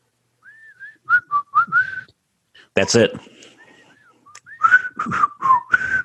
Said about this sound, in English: Can you whistle that theme? No. No. It's been so long since I've seen it. I know it's super famous. I'm failing.